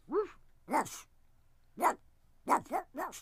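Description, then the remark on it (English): A person imitates a dog barking, about six short, sharp barks in an uneven rhythm with brief pauses between, loud. “Barking like a dog.”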